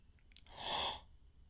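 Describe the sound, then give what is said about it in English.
A single sharp, breathy intake of air, a gasp about half a second long in reaction to the film The Breakfast Club being named, swelling and fading quickly against a quiet background with no talking. “We've got our first gasp.”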